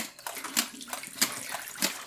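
Pre-soak water being poured out of a film developing tank while developing Kodak Tri-X film in HC110, with a bright, gurgling splash that surges in several quick glugs over a couple of seconds, fairly loud.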